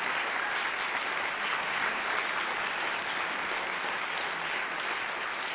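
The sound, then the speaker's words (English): Sustained audience applause for Bob Rosenkranz, a dense, even wash of many hands clapping at steady loudness throughout, with no voices breaking through. “And I just want to invite one more round of applause for Bob Rosenkranz for making this possible.”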